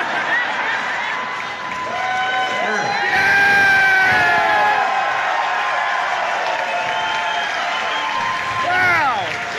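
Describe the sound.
A large concert crowd cheers and screams continuously, with loud whoops and shouted voices rising above the roar, slightly distorted, recorded on a phone by a person in the crowd who yells along.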